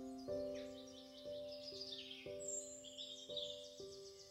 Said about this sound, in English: The birds that chirp and the eagle flying high in the sky.